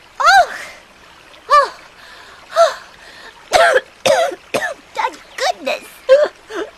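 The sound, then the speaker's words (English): A voice imitates a fox coughing and choking after being lifted out of a river: a few spaced, raspy hacks, then a rapid, sputtering run of gagging coughs with wet, strained gasps between them. “The fox coughed and choked and held onto the giraffe for dear life.”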